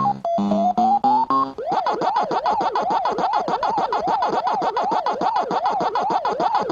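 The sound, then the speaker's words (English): Underwater recording, made with tiny biodegradable microphones placed in the Gulf, of oil-eating microbes eating oil: a few stepped, rising tones, then a loud, steady train of squeaky warbling pitch sweeps repeating about four times a second, with no voices. “Tiny microphones have been put into the Gulf, which are biodegradable microphones, by the way, which recorded the sound of these oil-eating microbes eating oil.”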